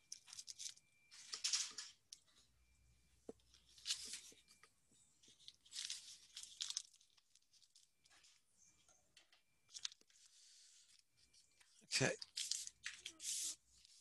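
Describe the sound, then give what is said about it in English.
Scissors snip and plastic wrapping tears and crinkles in a series of crisp bursts, with quiet pauses between them as a package is cut open and unwrapped. “You guys really rate, because I'm being nice and I'm showing it, taking my dasam out of their package.”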